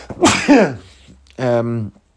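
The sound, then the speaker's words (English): A loud sneeze: a sharp breathy double burst followed by a drawn-out voiced tail, with no talking around it. “Every time I say club sandwich, I'm programmed to sneeze like the Manchurian candidate.”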